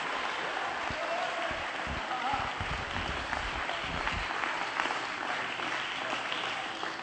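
An audience claps hands during a sermon, praising and thanking God, in a steady, dense wash of applause lasting the whole stretch, many hands blending into a continuous crackle with a few voices mixed underneath.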